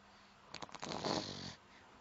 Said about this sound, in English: So you can hear this one snoring into the microphone rudely.